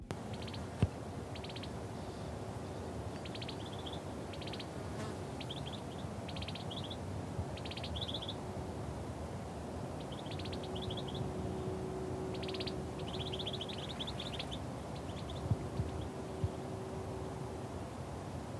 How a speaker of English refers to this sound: Now we'll listen to the vineyards at Burn Cottage. Here, you can hear two birds talking to each other.